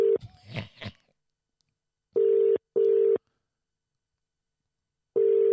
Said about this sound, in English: I'm going to phone him right this second. Why are you doing that? Yeah. Don't worry. We're going to hear it. We're all going to hear it.